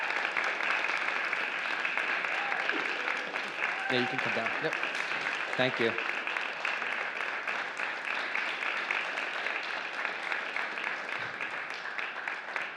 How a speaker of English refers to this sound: Let's give our missionaries a round of applause.